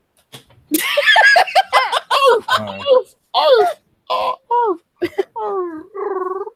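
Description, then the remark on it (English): A person imitates a dog chirping, a fairly loud run of about a dozen short squeaky yips with bending pitch, some quick and clustered, others longer and wavering, separated by brief pauses. “Why is your dog chirping again? Like, I'm pretty sure they're not supposed to make those noises.”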